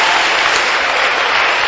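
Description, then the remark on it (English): A crowd applauds steadily, a dense, even wash of many hands clapping at once, fairly loud, with no voices standing out. “Those who are clapping, may you receive some surprises.”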